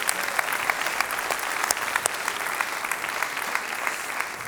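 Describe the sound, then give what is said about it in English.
A crowd applauds God after a song, clapping steadily, a dense, even patter of many hands holding at a constant level throughout with no voices rising above it. “I know some of you are just going to bust if you can't applaud God right now because of that last song, so do that.”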